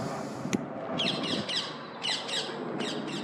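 bird, bird squawking

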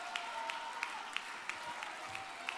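crowd, audience clapping hands

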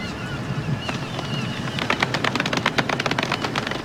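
sound effect, golf clap sound effect

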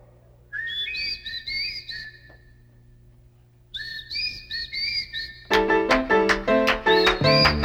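human whistling

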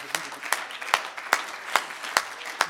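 crowd, audience clapping hands

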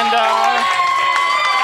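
crowd, audience applause and cheering

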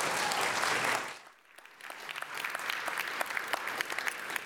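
crowd, audience applause

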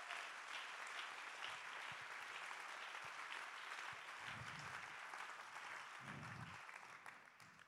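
crowd, audience hand clapping

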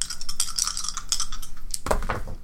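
household object, dice being rolled

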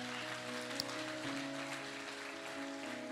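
crowd, audience clapping and cheering

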